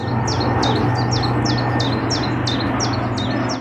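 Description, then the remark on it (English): A chiffchaff, recorded at a home near an airport, sings a steady, evenly spaced series of about ten high chiff-chaff notes over a loud, continuous low rumble of an airplane that persists throughout. “Here it is with the airplane sound.”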